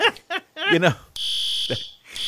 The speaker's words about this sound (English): And Kevin's pulled the fire alarm.